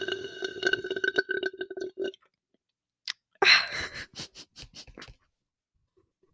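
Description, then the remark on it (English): Wet slurping sips from a drink, followed by a short pause, a sharp gulp and a run of soft mouth clicks, with no talking. “But I was like listening to myself sipping during the break.”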